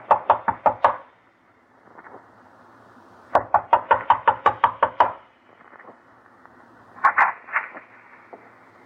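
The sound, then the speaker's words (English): Firm knocking on the door of Joe Poland's home in three bursts: a quick run of about five raps, a pause, a longer run of about nine, then a couple more, loud with a faint hum between. “Knock.”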